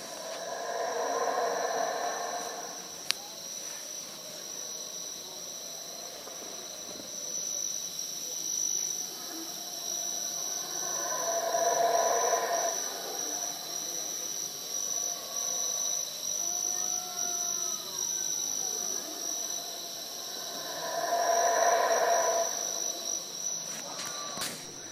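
Small black, furry, long-tailed howler monkeys call from far off in a jungle: rising, swelling bursts of calls recur about every ten seconds, with a few wavering tonal cries between, over a constant high-pitched insect drone.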